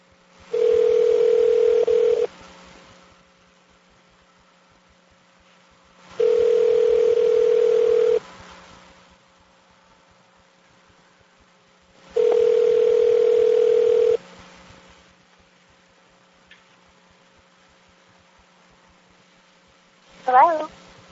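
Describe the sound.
A telephone call, placed to ask about a campus Chinese Culture Association, rings out: three steady, buzzy ringback tones, each about two seconds long with even pauses between, before a short burst of voice answers at the end.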